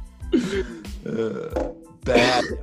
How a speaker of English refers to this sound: Oh, excuse me. That was a tickle in my throat cough, just so everybody knows.